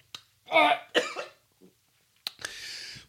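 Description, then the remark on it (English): A loud fit of coughing during a live call-in broadcast from Inglewood, Colorado: several harsh, raspy bursts in quick succession, with a short pause before a final hacking cough that trails into a wheezy breath. “And I'm coughing like crazy.”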